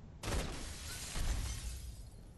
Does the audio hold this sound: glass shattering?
yes